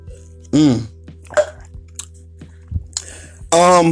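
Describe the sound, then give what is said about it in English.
A person drinking water during a quick break: soft wet gulps and mouth clicks as water is swallowed, broken up by two loud, breathy voiced exhales, with a low steady hum underneath. “Quick water break.”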